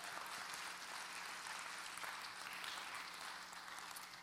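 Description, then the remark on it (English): A church audience claps steadily in praise of the Lord, a dense wash of many hands at an even volume that holds for the whole few seconds without a break, with no voices standing out. “Matter of fact, come on, give the Lord a hand clap of praise if you're going to do it.”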